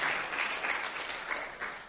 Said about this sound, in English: You did well. You should give yourself a round of applause for that.